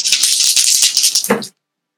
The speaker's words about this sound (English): Roll dice. 22 to hit.